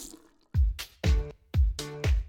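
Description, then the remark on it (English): Water from a kitchen tap splashes in four evenly spaced bursts, each a deep, full gush with a bright hissing edge, separated by brief quiet gaps; no one speaks. “if you haven't used your tap for 6 hours or more, you should flush your pipes a minute before drinking it.”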